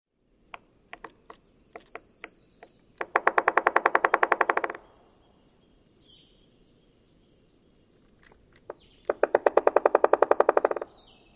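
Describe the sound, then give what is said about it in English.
American three-toed woodpecker drumming: several loose, irregular taps, then a loud, rapid, even roll of knocks lasting about two seconds, followed after a pause by a second matching burst. No voices. “This might be the most distinctive woodpecker drumming.”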